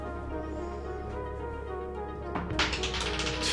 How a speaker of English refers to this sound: Wowee. Can we count that? Even though it was out of the dice tray? I mean, it's on the table. It's on the table, technically, so.